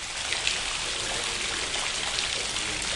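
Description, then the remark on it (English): Running water from the indoor atrium waterfall at software company Jade's headquarters, the Jade Development Centre in Christchurch, New Zealand, pours steadily with a bright, hissing splash, continuous, with no voices. “Its success symbolised by the company's headquarters with its mirror glass and atrium, complete with waterfall.”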